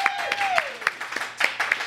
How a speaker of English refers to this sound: Can we give a round of applause for the Black Rabbit Mead folks?